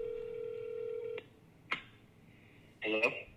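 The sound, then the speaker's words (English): A steady telephone dial tone hums for about a second, then cuts off, followed by a sharp click of dialing and a short burst of tones as a call is placed, blending with a brief voice at the end. “Let's call our first guest.”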